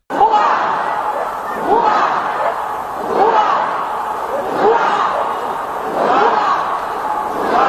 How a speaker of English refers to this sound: The Danish Prime Minister, Mette Fredriksen, proclaimed the new king from the balcony of the Royal Palace, with the crowd responding with cheers, the equivalent of hip hip hooray in Danish.